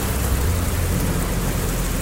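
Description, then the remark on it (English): Heavy rain pours in a dense, steady hiss while low thunder rumbles continuously underneath, a full thunderstorm with lightning growing more intense and striking more rapidly, no voices. “The lightning begins to grow more intense and begins striking more rapidly.”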